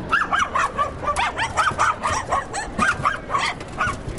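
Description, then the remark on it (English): A small Tibetan terrier, a non-sporting breed from Tibet, barks in a quick, steady run of high-pitched, yappy barks, about a dozen in a few seconds, fairly loud, with no one speaking. “They're Tibetan terriers, which are from Tibet.”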